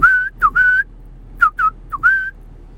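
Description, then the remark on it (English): A man whistles a short, bright tune of gliding notes in two quick phrases separated by a brief pause, clear with no talking. “And then all of a sudden, the guy that was making that sound, I was staring at him whistling.”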